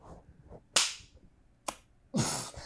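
Sharp hand claps ring out with gaps between them: two crisp single smacks, then a louder, fuller burst of claps at the end. No one speaks.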